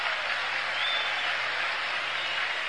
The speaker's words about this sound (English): And they're applauding Gibson on every out now.